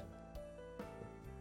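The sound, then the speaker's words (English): After a second of low, quiet background hum, glasses clink once in a toast: a sudden bright, ringing strike near the end with a high shimmering tone. “This is worth another clink.”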